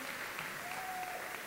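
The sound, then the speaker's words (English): Steady church audience applause for the dads standing up on Father's Day, a dense wash of many hands clapping at an even level, with a faint thin whistle rising briefly above the noise. “Let's give it up for all the dads.”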